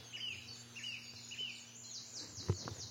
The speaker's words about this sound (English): Song thrushes.